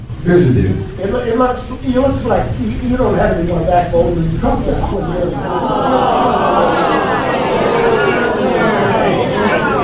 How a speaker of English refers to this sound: The pro-Biden crowd there responding to the man who said, you don't have any more backbone than Trump does. This is not a Trump supporter, by the way. He is a Democrat at a Joe Biden town hall